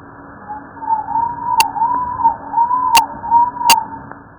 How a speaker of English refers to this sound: The sound you just heard. Has actually been slowed down to 8% of its original frequency, which allows us to hear it. Rats make two kinds of vocalizations. That one.